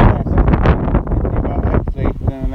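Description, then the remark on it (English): Loud, continuous wind buffets the microphone with a heavy, gusty rumble, nearly drowning out the muffled voices talking underneath. “Well, you can hear the wind, but you might not be able to hear us very well.”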